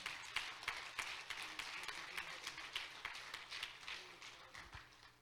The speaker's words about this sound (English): Amen. Clap your hands and love Him.